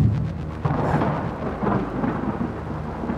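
A deep, rolling rumble of thunder fills the air, loud and sustained, with the steady hiss of heavy rain beneath it and no voices.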